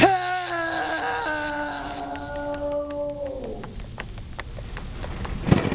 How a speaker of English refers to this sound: The storm outside the glass beats with howling fury against the vulcanized sand barrier.